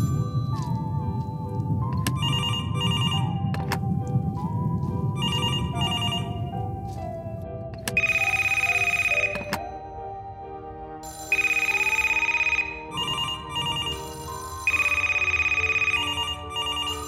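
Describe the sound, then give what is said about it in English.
An old telephone rings in an old phone shop in repeated bright, jangling bursts with short pauses between, getting louder partway through, over a low, wavering tonal hum underneath. “Ooh, I hear ringing. Of course. It's an old phone shop.”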